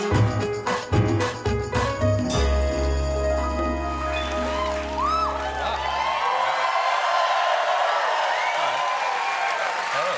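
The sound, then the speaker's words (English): The Late Show with Stephen Colbert studio audience claps and cheers loudly and steadily to welcome a New Zealand folk duo, with scattered whoops rising over the applause, following a few seconds of punchy band hits and held chords that give way to the crowd. “Please welcome ….”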